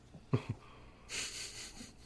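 Two quick, harsh coughs in a row, followed by a long, raspy, wheezing breath with a hissy edge. No one is talking.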